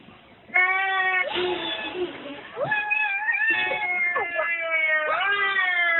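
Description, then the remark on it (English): A voice imitates eleven black cats hissing, with a run of drawn-out, wavering meows and yowls that slide up and down in pitch. Several sound back to back, loud, with a breathy hiss-like rasp mixed in. “11 black cats hissing.”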